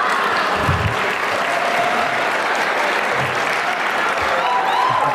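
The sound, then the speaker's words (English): An audience at an award ceremony applauds steadily, dense overlapping claps forming a continuous, fairly loud wash of sound that holds evenly for about five seconds without anyone speaking over it. “I'm wondering why everyone clapped for Dr. King and no one clapped for me.”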